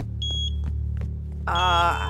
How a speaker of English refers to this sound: I think I found the beeping noise.